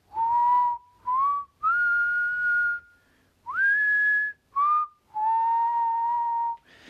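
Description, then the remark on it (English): A voice whistles about seven sustained, gliding notes in a row with short gaps between them, imitating a faraway, wind-like whistling. The whistling is clear and fairly loud, with no talking. “And there was also a kind of whistling that was far away and sounded a little bit like wind and a little bit like a whistle.”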